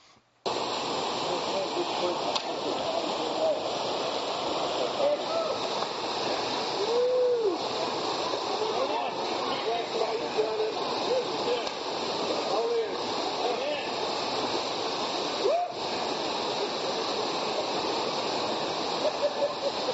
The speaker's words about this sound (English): Now that's the mighty Jordan River. Doesn't that look small? It's like a big creek. It's running at about 3% of what it was during Bible times. It's 90 degrees outside, and that water is freezing cold.